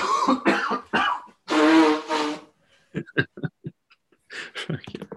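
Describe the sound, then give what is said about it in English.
Someone blows their nose loudly in several forceful, honking bursts, followed by quieter sniffs and short throaty noises. “sorry, I'm gonna blow my nose first before I start.”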